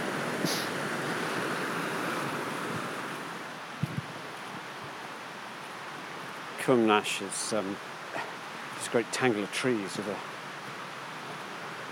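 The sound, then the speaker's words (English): A steady, rushing wash of water from a lively stream tumbling over small falls, loud and continuous throughout, with a man talking over it in the second half. “very noisy series of mini waterfalls all the way through it.”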